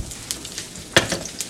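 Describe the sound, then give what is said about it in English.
Bacon sizzles and crackles in hot oil, a steady hiss broken by sharp pops, one louder spitting burst standing out midway. No one speaks. “Now there are some complications with the bacon oil.”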